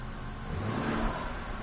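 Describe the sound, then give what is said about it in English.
A car engine with a stock exhaust revs briefly with a low, throaty exhaust rumble, steady and fairly loud throughout, with a broad hiss of engine noise over it and no voices. “Here's your revs.”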